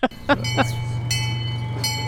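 A small zoo train at the Santa Barbara Zoo rolls along its rails, a steady low engine drone underneath a few sharp clacks early on and brief high metallic squeals of the wheels.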